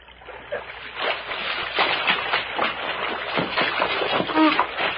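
Creek water sloshes and splashes in irregular, churning bursts for several seconds as a shot man is pulled out of the creek, a steady moderate wash of noisy surges with no clear speech over it.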